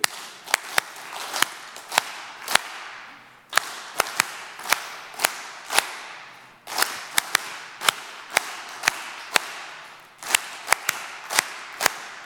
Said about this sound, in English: Don't sing it, don't hum it, but we're going to clap to it. You think you can do that? So get Happy Birthday in your head. We're going to clap to it.